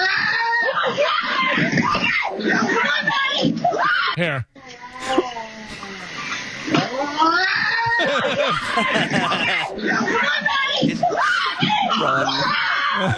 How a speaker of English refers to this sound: It's a bobcat. Run away. It sounds like a police car in London.